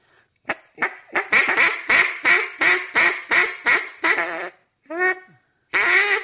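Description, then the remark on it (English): A rapid, loud series of raspy duck hen quacks blown on a duck call in a calling demonstration, about a dozen evenly spaced notes, followed by a brief pause and a couple more calls. “Now you figure out how to quack like that.”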